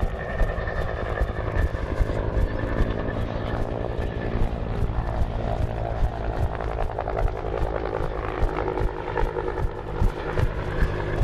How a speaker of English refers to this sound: Here's a helicopter taking off.